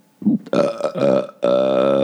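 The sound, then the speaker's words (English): A loud, drawn-out belch rumbles, breaking briefly before a second long, resonant burp carries on to the end, with no talking. “We've been doing that a lot in front of our son Ellis yeah. belching and it's fun to burp at him”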